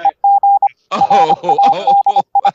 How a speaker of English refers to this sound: Where you get Morse code from, man?